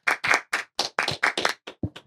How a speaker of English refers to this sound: Round of applause real quick. We have to. Yeah, we can. We can do that.